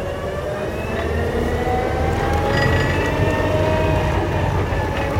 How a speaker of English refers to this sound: Like a couple of electric tractors. That's one from JCB